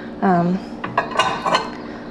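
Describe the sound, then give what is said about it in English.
Clinking and clattering of dishes being stacked into cupboards, a quick run of several knocks and rattles after a brief tonal squeak, moderately loud with no talking. “If I were to have company show up at my house right now, I'm not really gonna freak out that I have dishes in the sink because that's just, sorry, too short for my cupboards.”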